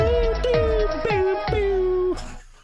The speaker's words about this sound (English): I love the news jingle.